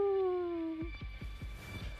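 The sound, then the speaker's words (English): A voice imitates a dog, starting with a drawn-out, slightly falling howl and breaking into a quick run of short, gruff barks, moderately loud. “Unless they want me to bark.”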